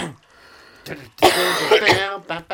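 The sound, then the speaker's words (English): A run of loud coughs: a short hack, then a longer raspy, throaty stretch of coughing, and a final sharp cough at the end. No one speaks. “Your cough sound exactly like the opening the opening drums of …”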